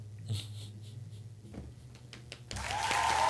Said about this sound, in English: Sometimes you gotta do your own sound. Studio audience. Hand claps again. A little louder.